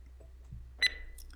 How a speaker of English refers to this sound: I allowed myself one reading only, the piercing of the dimensional wall, a single generated beep.